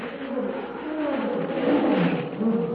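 A wounded lion, rolling on the ground in savage agony in the moonlight, snarls and roars in a long, continuous, loud rumble, with harsh growling that rises and falls without a break and no one speaking.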